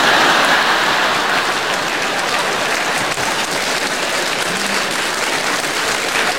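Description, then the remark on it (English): A crowd applauds steadily, a dense wash of clapping hands that holds at an even, fairly loud level for several seconds with no voices over it. “Applauding my disease.”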